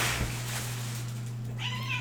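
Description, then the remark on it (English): A house cat gives a single short meow near the end over a steady low electrical hum, with faint rustling earlier on as the cat plays with a trash bag of clothes in an office. “We have a trash bag in our office of clothes we want to donate, and my cat is trying to pick out something she wants, I guess.”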